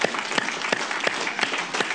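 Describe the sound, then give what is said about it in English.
An audience clapping for Jesus together in a steady, rhythmic beat, the claps landing at regular intervals over a dense wash of many hands applauding at once, fairly loud. “You can clap for Jesus if you like.”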